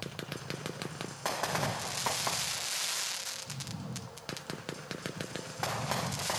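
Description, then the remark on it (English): A 49-shot Brothers firework cake called Turf War fires off a dense, continuous barrage of sharp crackling pops, with rapid irregular bursts layered over a steady hissing roar that stays loud throughout. “So Turf War is 49 shots.”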